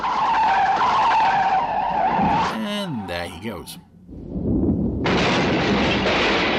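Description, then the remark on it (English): A lorry's heavy engine roars, then its tyres screech in a sharp, wavering skid, followed by a low rumble and a loud, sustained crashing burst as the lorry crashes without exploding. A voice briefly speaks over the opening. “that's probably the only lorry crash in, or vehicle crash at all in Captain Scarlet where the vehicle doesn't explode”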